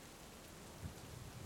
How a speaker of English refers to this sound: you stand there quietly in the rain with Tello for a while, it just falling on you